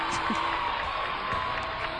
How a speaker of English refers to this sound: There. A round of applause.